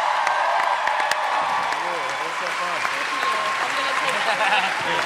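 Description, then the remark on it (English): Loud, sustained applause from a large crowd for Maisie Williams, with steady dense clapping and scattered cheers and whoops running throughout, mixed with a murmur of voices. “Please join me in giving a huge round of applause to Maisie Williams, who crushed it.”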